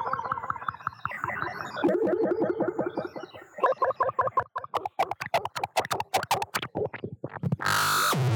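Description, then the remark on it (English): A garbled, distorted voice on a phone line keeps breaking up into choppy fragments and dropouts, with crackling clicks, before ending in a sudden loud burst of static. “It just keeps going in and out.”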